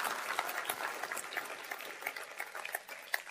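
A crowd applauds steadily, many hands clapping in a dense, continuous patter that stays fairly even throughout and sounds subdued, with no voices over it.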